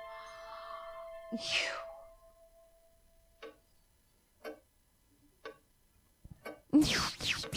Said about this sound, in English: It's a very loud clock, isn't it? Yeah, that's fucking ridiculous.